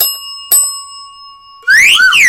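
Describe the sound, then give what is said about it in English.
A small news bell is struck twice in quick succession, its bright, high ringing tone sustaining, before a loud, swooping, warbling high-pitched sound abruptly takes over. “That is just tragic, so I'm going to ring news bell Chan twice.”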